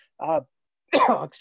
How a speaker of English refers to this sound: I'm so sorry, I'm coughing.